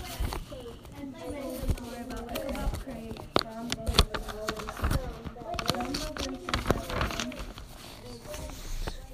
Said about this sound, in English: The horse rider trotted up next to Ichabod, but it was too dark to see them.